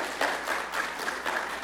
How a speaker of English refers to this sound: You didn't have to do anything and you got applause. That's impressive.